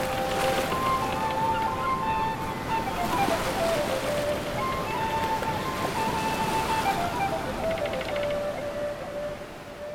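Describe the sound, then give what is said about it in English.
Sea waves wash steadily onto the shore in a continuous, fairly loud rush of surf, with faint high tonal sounds drifting over the top, by the sea where people sit for a picnic and some fishing casts. “But no, so what we're going to do is, I think, while we're sitting here, have a nice little picnic, do a bit of casting, and see what we can see. By the sea.”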